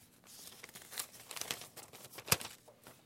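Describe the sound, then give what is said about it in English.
A paper card received as a letter being handled and unfolded: a quiet run of dry crinkles and rustles in irregular bursts, with one sharper crackle near the end. No voices. “I got a letter today, a card I want to read to you here.”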